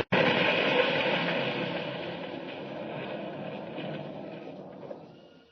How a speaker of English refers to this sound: Well, we just got out of that in time. The trolley car's a wreck. Smashed into a million pieces.